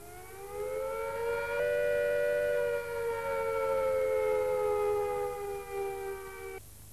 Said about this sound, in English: If we are attacked by nuclear weapons, these are the warning sounds you must recognize. First, the attack warning. If an attack is expected, the sirens will sound a rising and falling note like this.